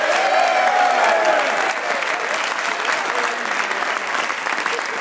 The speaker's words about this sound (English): Let's have a round of applause for Tanner.